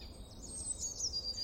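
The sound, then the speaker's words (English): Birds sing and chirp in a quick, continuous high-pitched twittering, soft, over a steady low rumble of background noise. No one speaks. “Birds are everywhere, even in the densest part of intensely populated cities around the world.”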